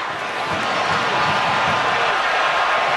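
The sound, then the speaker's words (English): A large arena crowd cheers in a steady, loud, continuous roar that holds for about three seconds, with no clear voices standing out, at a Marquette basketball game during the kiss cam with 4.6 seconds left. “That's the cheer that you hear.”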